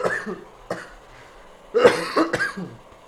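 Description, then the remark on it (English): A bout of harsh, repeated coughing after smoking, several sharp bursts in quick succession with a raspy throat-clearing quality, with no talking. “Sorry for all my coughing.”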